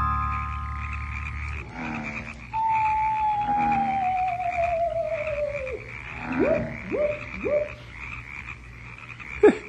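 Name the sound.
frogs croaking at night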